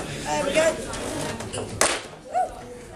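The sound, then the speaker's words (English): A walking cane is put down with a single sharp knock at the Black Horse, clear above a steady murmur of background voices, with brief bits of speech before and after it. “That was just me putting my cane down.”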